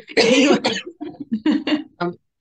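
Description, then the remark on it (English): A loud burst of coughing from a person with a bug, during an interview: a harsh first cough followed by several shorter, rougher coughs and throat-clearing sounds in quick succession, with no talking. “Apologising, I'm maybe coughing through this interview.”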